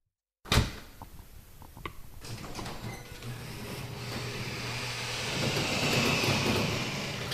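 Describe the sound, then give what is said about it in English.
A garage door rumbles open with a sudden clunk, then a steady mechanical drone and rattling that grows louder and rougher as the door rolls up. “One morning, 3 years ago, I opened my garage door and started walking.”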